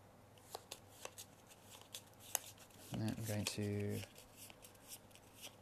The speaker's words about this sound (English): Do I just shuffle this back in?